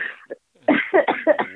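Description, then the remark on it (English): A woman coughs hard in a rough, rapid fit: a short burst and a small one, then a loud run of five or six strained, raspy coughs in quick succession. “As she coughs her lungs out.”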